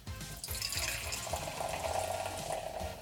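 Beer, a cloudy Saison Pilsner from a can, pours steadily into a glass, a continuous gurgling, splashing flow that rises slightly in pitch as it fills, fairly loud with no talking.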